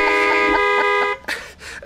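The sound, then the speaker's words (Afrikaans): A loud car horn blares in one sustained honk for about a second, then cuts off, followed by a couple of short, rough bursts of noise. “Wie toeters uitdeel moet, toeters kan ontvang.”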